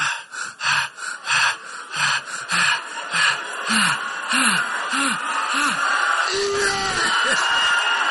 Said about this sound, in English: Yeah, excitement. And the breathing.